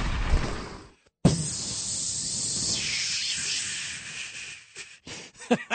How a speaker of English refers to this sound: That balloon descent was brought to you by my sidekick